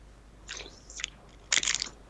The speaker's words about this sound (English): Whoa. Ew, that's gross. You got to stop doing that. You got to stop slurping. But it's Fresca. I know, but I don't like when you slurp.